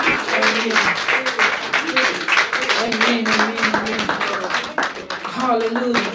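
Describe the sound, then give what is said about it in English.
An audience claps steadily as a hand clap of praise to the Lord, a dense, continuous patter of many hands lasting throughout, with voices calling out over the clapping. “Come on, y'all, give the Lord a hand clap of praise for his glory.”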